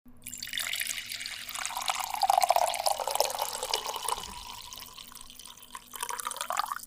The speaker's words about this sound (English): I sat here and listened to 6 takes of coffee pours. I watched you do it so we could redo this intro, and here we are.